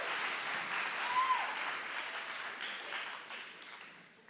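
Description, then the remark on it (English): Steady audience applause, a round of applause for friends, a dense wash of many hands clapping at an even, moderate volume that holds for several seconds before thinning slightly toward the end. “So let's have a round of applause for all of our friends.”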